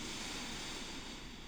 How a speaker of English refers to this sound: We're going to do our breathing exercise one more time. Inhale for 4.